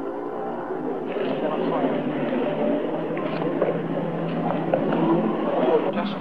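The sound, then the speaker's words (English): Several cars idle and creep along, engines rumbling steadily as they line up where there is no parking, with indistinct voices murmuring in the background throughout. “Cars line up here very quickly because there's no parking.”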